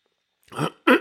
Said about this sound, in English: So wanted to talk about a couple things today, and before we do that, well, we are going to have to take a sip of our preferred beverage, so.